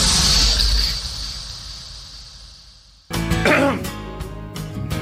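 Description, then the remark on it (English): A dull, washy sound fades out, then a mic switches on abruptly on the La Crosse Talk PM radio show and someone coughs and clears their throat in a few rough, loud bursts. “Whoops, I turned the mic on, then I coughed,”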